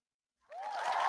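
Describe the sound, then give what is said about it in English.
A burst of applause starts suddenly after a moment of silence and quickly swells to a steady, dense crackle of clapping, with a cheering voice mixed in. “Can we get a round of applause for our boy”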